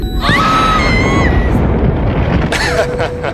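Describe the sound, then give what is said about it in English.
A heavy, roaring crash of an escape pod impact, with a thick low rumble throughout, whining metallic tones sliding over it early on and a burst of clattering debris near the end. “Warning, impact detected.”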